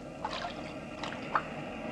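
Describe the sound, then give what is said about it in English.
Gentle ocean waves wash softly in a steady hiss, with a few small lapping splashes rising briefly above it; quiet, with no voices. “Imagine going to sleep to the sound of waves.”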